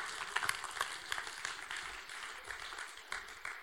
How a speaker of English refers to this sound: Everyone, let's give him a clap. Let's give him a clap.